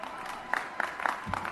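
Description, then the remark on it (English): A lone person on a stage claps slowly and steadily, about five sharp handclaps at an even pace, fairly quiet over a faint background hum, with no one else joining in. “One person on the stage applauded.”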